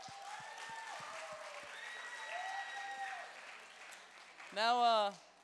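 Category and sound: crowd, church audience applauding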